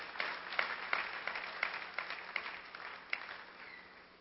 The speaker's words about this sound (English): If I were you, I would clap for Jesus. Honestly.